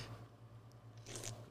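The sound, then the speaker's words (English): A single wet gulp of someone swallowing a drink, heard on its own over a low steady hum, with a softer mouth click just after. “I gulped really loud.”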